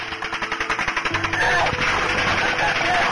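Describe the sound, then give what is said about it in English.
Rapid automatic gunfire, pinning down police officers, rattles off in a fast, steady string of shots, then gives way to a loud, dense wash of noise with muffled voices underneath. “The officers are pinned down by automatic gunfire.”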